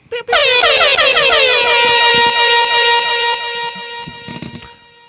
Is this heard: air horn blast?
yes